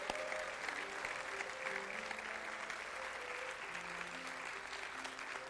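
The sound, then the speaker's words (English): A church audience claps steadily for those who made a decision of faith in the service, a dense wash of many hands, while sustained organ or keyboard tones hold soft chords underneath. “Can we clap for all those who made that decision today?”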